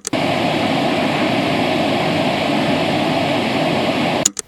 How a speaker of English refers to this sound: Now, we're in Virgil's study and he has two big speakers on either side of his desk. Okay, so white noise is this.